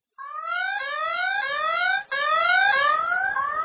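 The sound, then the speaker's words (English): A loud electronic siren from a survival device, on its second siren setting, rising in quick repeated whoops about every half second, continuous apart from one brief dropout, with no one talking. “You want siren one or siren two? Siren two. Okay. Here we go. Siren two.”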